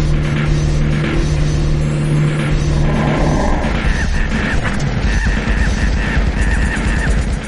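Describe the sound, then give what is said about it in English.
Shrill, monkey-like screeches from female video game zombies as they are being shot repeat over a dense, loud wash of crashing impacts and engine rumble, with no one speaking. “So that sound like a monkey screeching is like all the women zombies as you're shooting them.”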